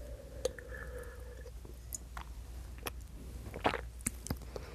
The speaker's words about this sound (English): I'm going to take a sip of my drink here.